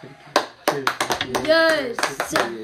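A few sharp hand claps ring out in an uneven rhythm, mixed with brief vocal whoops and a rising cheer in the middle, all fairly loud.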